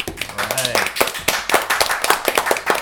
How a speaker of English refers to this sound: But anyway, listen, kids, you guys are amazing. Can I get a big round of applause for yourselves?